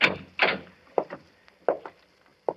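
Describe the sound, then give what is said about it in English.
An unlocked door being opened, heard as a series of hollow wooden clunks and rattles in irregular pairs, with quiet gaps between them and no voices. “You see, it's unlocked, as he left it.”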